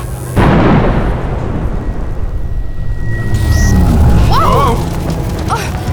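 An electric energy burst from inside a school hits suddenly and loudly, then a heavy crackling rumble rolls on for several seconds, with a thin steady whine and a few warbling chirps near the end.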